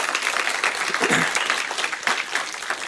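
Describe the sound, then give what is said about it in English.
A church audience claps steadily throughout as a praise offering to God, a dense, continuous patter of many hands with no talking over it, holding an even loudness from start to finish. “Just give God one more clap, praise offering just to get you woke back up and get you happy one more time.”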